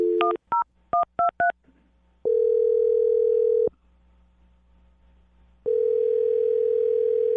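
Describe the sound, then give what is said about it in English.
A quick string of about six touch-tone dialing beeps, followed by a steady telephone ringing tone, a gap of silence, then the ring starting again, clear with no voices; a host of the radio show Brooke and Jubal in the Morning dialing a listener's phone number. “All right, well, I'm going to dial her phone number right now and see if we can figure it out.”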